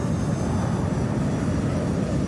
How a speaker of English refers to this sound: Outside, a 390-mile-an-hour blast of wind at minus 17 degrees centigrade smashes into Tim Lancaster's body.